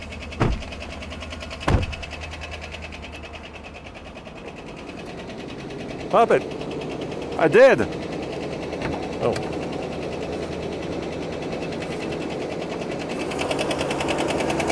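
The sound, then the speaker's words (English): An idling, well-worn car engine with its hood open, a rapid, steady metallic ticking running through it, while people exchange a few brief words and occasional clunks punctuate the drone. “Well, that is definitely a tick. That's a lot of ticking.”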